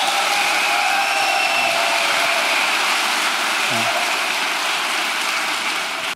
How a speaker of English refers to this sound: The crowd is applauding here because you have these two men who seem in such disagreement, and here is this extreme point of agreement